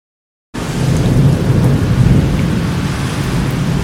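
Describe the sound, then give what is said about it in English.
A thunderstorm starts abruptly after a brief silence: heavy, steady rain with a deep rolling rumble of thunder underneath, loud, with no voices. “All swift waves I command your obeyance. Storm no more.”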